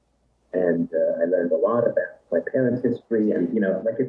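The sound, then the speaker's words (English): Speech comes back as a delayed, thin echo over a call line, the voice sounding narrow and tinny as phrases repeat in steady bursts at moderate loudness. “Getting a bit of an echo here.”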